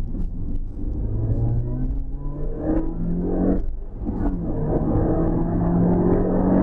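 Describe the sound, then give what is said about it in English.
A supercharged 1.8-litre Toyota car engine revs, its whining pitch climbing steadily, briefly dropping as gears shift, then rising again over a constant low rumble, with no talking. “So this car poodles along at 3,000 RPM. Anything over, hear that engine, you can hear the supercharger really does kick in.”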